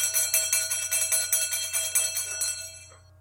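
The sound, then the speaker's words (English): A bright bell rings in quick, steady repeated strikes for about two and a half seconds, its metallic tones sustained and layered, then fades away. No voices accompany it. “wouldn't it be nice if we could just ring a bell, make a wish, and have all of our concerns taken care of.”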